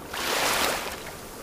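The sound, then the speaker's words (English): A single sea wave surges in against rocks with a broad, hissing wash, swelling quickly and then easing back into a softer rush of water. Moderately loud, with no voices. “living on the rocks overlooking the sea.”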